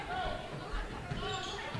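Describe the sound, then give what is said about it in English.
A basketball dribbled on a hardwood court during a Saugatuck versus Gobles game, a few dull repeated thumps in an uneven rhythm beneath steady crowd murmur and arena noise, moderately quiet. “Deanna with the dribble.”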